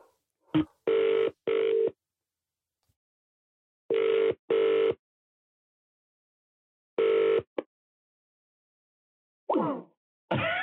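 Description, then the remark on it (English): An outgoing phone call's ringing tone: three clear double-burst rings separated by steady pauses, heard through the line, followed by brief rustling clicks as the called woman puts the phone down. “Shall we just call her again one more time?”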